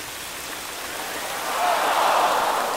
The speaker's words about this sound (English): everybody gathered in City Hall Park. Yeah, they turned a big fountain on and...